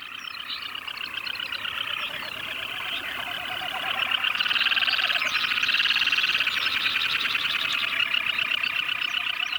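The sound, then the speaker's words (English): A dense chorus of waterbirds calling during mating season at Tshakpuk Lake, recorded by biologist Garrett Vinn: countless overlapping high, rapid chattering calls blend into a continuous din that swells louder about halfway through. No one speaks. “And this is what Tshakpuk Lake sounds like during the frenetic mating season. These birds were recorded by Garrett Vinn, a biologist who used to conduct bird population surveys for oil companies that hoped to drill in the area.”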